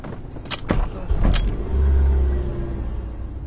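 A few sharp clicks and knocks inside a car, an early prototype fitted with the Amehlo system, then a low engine rumble swells as it pulls away for a quick demonstration drive, a steady drone continuing to the end. No one speaks.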